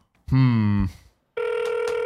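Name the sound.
phone call ringing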